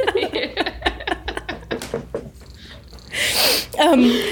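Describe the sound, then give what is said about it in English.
A single sharp sneeze bursts out near the end, just after a stretch of people talking, followed by a brief rising vocal sound. “God fucking bless you.”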